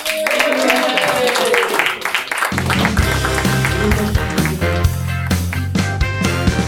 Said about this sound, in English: Good round of applause,